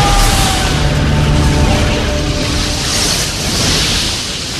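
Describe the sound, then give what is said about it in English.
A loud, sustained roar of rushing water and crumbling debris as the roof of a tunnel under a river collapses and tons of river water flood in. A thunderous collapse with a heavy low rumble that surges and washes steadily for several seconds, overwhelming. “The roof collapses as tons of river water flood the tunnel.”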